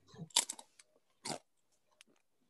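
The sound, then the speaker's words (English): Crunching on a ghost pepper chip that had been kept in the fridge all day: two sharp, loud crisp bites about a second apart, each with a short crackling trail, followed by a few faint chewing clicks. No one speaks. “But yeah, so I got my ghost pepper chip. Try this out.”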